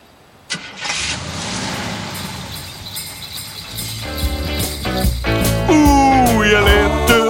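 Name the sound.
car engine starting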